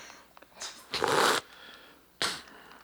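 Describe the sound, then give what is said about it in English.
A woman slurps a drink loudly into the microphone, a long airy suck followed by a shorter second slurp, with faint clicks and rustles before it. “And then she slurps it on the mic.”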